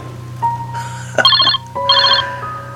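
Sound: telephone ringing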